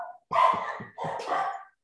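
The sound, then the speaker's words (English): A dog barks in two short, rough bursts, one right after the other, fairly loud, with no talking over it. “Investing in a good filter for dogs is a good idea.”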